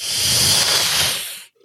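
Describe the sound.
A person imitates the hiss of a small dragon-like creature with one long, breathy, harsh hiss that holds steady and loud for about a second and a half, then cuts off abruptly, with no talking.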